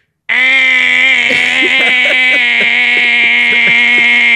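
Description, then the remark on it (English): A voice imitates a clothes dryer's end-of-cycle buzzer with one loud, steady, nasal buzzing drone at a low fixed pitch, held unbroken for about four seconds with slight wavers. “Well, yeah, can I give you what my dryer sounds like when it's done?”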